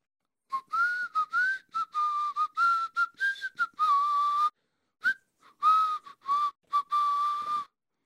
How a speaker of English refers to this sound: Yeah, I'm going to take out my whistle. Oh, here it is.